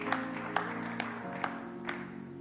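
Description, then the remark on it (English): Sparse, evenly spaced hand claps, about two per second, sound thin and half-hearted from a church audience during a service, over a steady sustained chord of instrumental music that shifts pitch midway. “I thought you were clapping for me with that very weak clap.”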